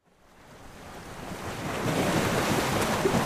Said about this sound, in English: stands on a rocky shore looking out over the infinite waves of a roiling southern ocean.